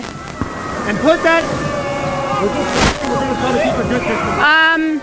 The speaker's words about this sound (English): there was a noise that kind of sounded like a gunshot or a firework over there